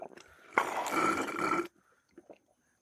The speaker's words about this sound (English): Very thirsty. Very heavy breathing going on.